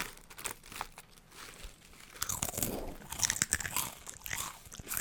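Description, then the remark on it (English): Crunching of crisp food being bitten and chewed, a series of sharp, crackly bursts that grow louder and denser toward the end, with no talking. “One last crunch for the road.”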